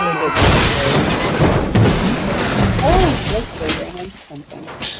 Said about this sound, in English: Oh, they did run into a cow.